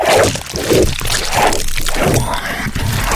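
Wet, slippery chewing as a man eats a tooth like a candy, squishy, crunching bites repeating in a steady rhythm, loud and continuous, with no voices.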